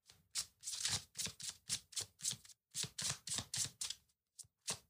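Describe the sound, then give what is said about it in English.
A deck of tarot cards being shuffled during a reading: a steady run of quick, papery bursts with brief gaps between them, moderately loud, with no voices. “Okay, the cards are getting stubborn.”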